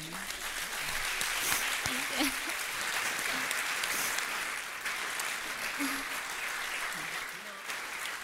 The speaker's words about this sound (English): I can't just get over this wonderful introduction from our young women. I just want another round of applause.